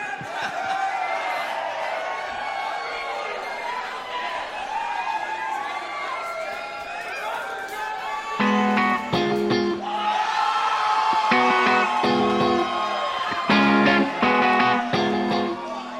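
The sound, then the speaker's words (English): A large concert crowd roars with sustained cheering and scattered yells, a dense wall of voices that swells louder in the second half with bursts of whooping. “You guys are loud.”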